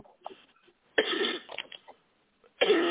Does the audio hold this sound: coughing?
yes